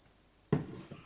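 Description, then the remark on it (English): A soft gulp of water breaks the quiet as someone drinks water, followed a moment later by a smaller second swallow. No one speaks. “I'm going to drink some water first.”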